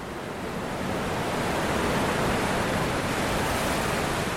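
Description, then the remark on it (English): Steady roar of big ocean waves breaking on the beach at Whatipu, on Auckland's west coast at the mouth of the Manukau Harbour, on a fine morning; a continuous broad wash that swells slightly in the first second and then holds loud and full, with no voices. “The waves are still big by the time they reach the shore.”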